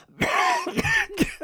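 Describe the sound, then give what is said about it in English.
A man coughs in three wet, harsh, phlegmy bursts, the first drawn out and rasping, the last two shorter, with a throaty gurgle between them and no talking. “Martin's voice was garbled with phlegm. He coughed.”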